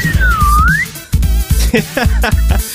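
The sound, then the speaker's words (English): A voice in a studio imitates a slide whistle with a clear, thin tone that dips and then rises within a second. Low, rhythmic vocal sounds and short bursts follow, fairly loud. “I wish I had other things in the studio here to do, like, you know, train whistles, like, woo! Slide whistle.”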